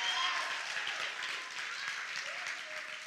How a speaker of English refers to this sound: No, the Bible says, go ahead and put your hands together. Clap like you lost your mind.